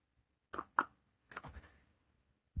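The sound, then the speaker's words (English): Someone sips tea: two quick clinks or clicks, then a brief, breathy slurp, and finally a soft low thud like a cup being set down. No talking. “Give me one second as I take a sip of tea, please, guys.”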